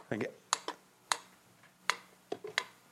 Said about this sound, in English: A metronome gives us a steady, regular rhythm or a pulse. It's something in musicality that allows us to stay on the beat. Our drummers here will note what a metronome is. It allows them to practice to a regular pulse. This is an analog version.